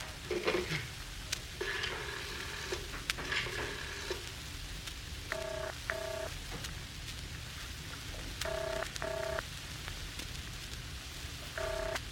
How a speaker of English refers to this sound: Excuse me while I use the house phone.